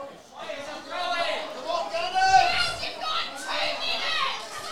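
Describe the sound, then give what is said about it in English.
A football crowd of Gunner's fans urges its team on in the dying minutes of a match, a dense, continuous swell of many raised voices cheering and shouting together, holding steady and fairly loud for the whole stretch. “The crowd coming to life here. Gunner's fans urging their team on, willing them on, trying to lift them home.”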